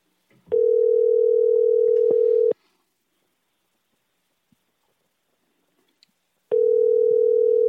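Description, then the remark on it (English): An outgoing phone call rings: two long, steady electronic ringback tones, each about two seconds, separated by a long silent pause. Clear, with no one speaking. “I could call for my one phone call.”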